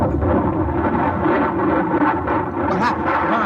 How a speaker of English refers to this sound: What is it, Colonel? What happened? The bomb must have blown.